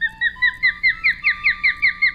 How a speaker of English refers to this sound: He was referring to the bird sometimes called seahawk. It's Pandion helietus, better known as the osprey.